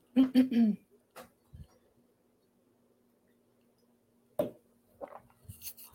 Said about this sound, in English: Just gonna have a quick water.